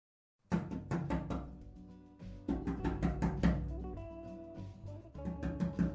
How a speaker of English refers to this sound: It's useless. You can stop banging on the glass. It's a waste of time. Nobody can hear us.